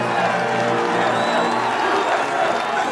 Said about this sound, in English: And later, after he started to lose, when one could hear more boos in the crowd and more people shouting, USA, USA, it really did hurt him.